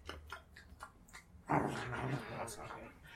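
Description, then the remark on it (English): A person imitates a wolf howl with their voice: a few short, breathy sounds, then a loud, drawn-out howl that holds for over a second before fading. “And then all of a sudden, the sound, like, quadruples in resonance and spreads out over an area. Well, the wolf howls.”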